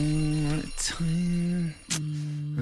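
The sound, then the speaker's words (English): A loud, harsh electronic buzzer sounds in three sustained bursts with brief gaps, a steady droning tone like a quiz time-up buzzer, with no talking over it. “Time and the old buzzer there with the Cadbury.”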